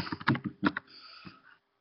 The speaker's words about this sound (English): Nope, Ben is typing very loudly in my ear right now.